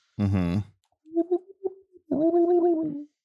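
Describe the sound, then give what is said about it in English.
Pigeons cooing outside a window: a short, loud throaty burst, then a few soft low warbling coos, ending in a longer rolling coo that wavers at a low pitch. “This is what I listen to. The sounds of the pigeons.”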